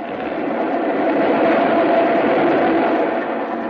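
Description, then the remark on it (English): An express train roars steadily through a station at speed without stopping, a loud, dense rumble with rattling wheels that stays constant throughout, with no voices heard. “Train coming. Oh. It's an express, Pete. It ain't stopping.”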